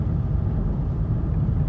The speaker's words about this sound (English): The road looks really dangerous. Again, I'm really confident for my own abilities, my own driving abilities. Even though I'm driving a little bit too fast, I think I know how to react.